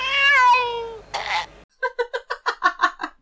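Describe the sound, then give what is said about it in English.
A human voice imitates a cat choking: a strained, wavering meow, a raspy hiss, then about eight quick rhythmic hacking coughs, loud, with no talking. “But that the cat choking, it seemed to me that someone was doing, a human being was doing a voiceover of what they thought a cat choking would sound like.”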